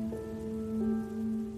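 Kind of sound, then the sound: nature, rain falling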